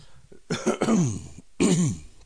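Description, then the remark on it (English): Two rough throat-clearing coughs, a longer one followed by a short pause and a second burst, loud and right into the microphone with no talking. “First thing, just cough right into the microphone.”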